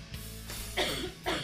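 A woman coughs twice in quick succession, two short, harsh bursts over a low steady background hum, with no talking.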